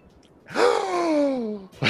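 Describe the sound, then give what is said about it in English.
Gasps through a courtroom: a loud, drawn-out voiced gasp that slides downward in pitch for about a second, followed by the sharp start of another gasp right at the end. “Gasps through the courtroom.”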